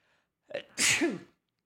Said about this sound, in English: I have to sneeze.